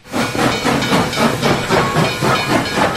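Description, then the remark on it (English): A steam train, called the Teague train, hisses loudly and steadily, with rhythmic chuffing pulses and a thin, high whistling tone running underneath, with no voices. “Is that the Tiggy train? That's the Teague train.”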